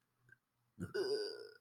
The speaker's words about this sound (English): Damn it. That about sums it up, honestly. Like, just a suppressed burp.